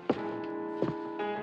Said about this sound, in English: And you kind of hear him get up away from the phone and close the door of his office and sit back down into the chair.